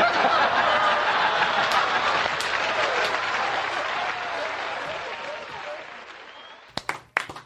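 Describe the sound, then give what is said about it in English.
Sustained applause from an audience after listening to a Rickles story, with scattered laughter mixed in, steady and full for several seconds before fading out, followed by a few sharp isolated claps near the end. “We're applauding.”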